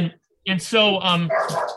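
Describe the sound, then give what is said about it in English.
A female corgi that needs to go out to the bathroom barks in a quick run of sharp, high yaps that blend into a whiny, drawn-out yelp, loud and clear after a brief silence. “my dog's coming, has to go to the bathroom. My wife's going to take her out. We have a beautiful corgi.”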